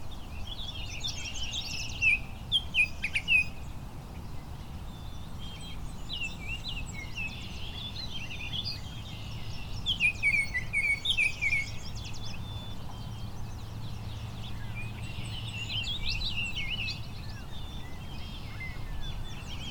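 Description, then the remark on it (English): A songbird sings complex, warbling phrases in repeated bursts of bright, high notes, returning every few seconds over a steady low outdoor rumble, and no one is talking. “Much more complicated song too.”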